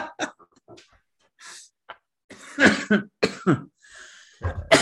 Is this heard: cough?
yes